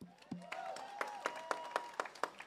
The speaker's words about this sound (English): So before we start, we definitely wanted to, you know, acknowledge the people. Yeah, please clap it up for them.